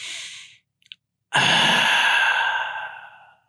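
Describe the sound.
A person imitates the satisfied "ahh" exhale people make after gulping water: a short breath, a faint swallow click, then one long, loud, breathy sigh with a vocal tone that slowly fades.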